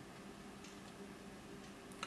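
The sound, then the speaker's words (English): A clock ticks faintly and steadily in an empty room, each soft tick spaced about half a second apart over a low background hum. “I look around the empty room, the clock still ticking in its place, and all else silent as the tomb,”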